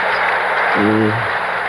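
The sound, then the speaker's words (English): Rain begins to fall at night in a steady, even hiss that fills the whole moment, with a brief low, humming tone rising out of it partway through before fading back into the downpour. “Oh, look at that. It started into rain.”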